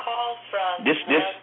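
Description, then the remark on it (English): A phone ringtone plays in short bursts of bright, tonal melody, several quick phrases in a row, sounding thin and slightly muffled as if from a small speaker. “Like every time I get on here, the phone start ringing.”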